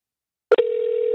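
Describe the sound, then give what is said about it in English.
After a moment of silence and a couple of quick clicks, a steady electronic telephone ring tone begins and holds evenly and clearly, with no voices. “It's ringing.”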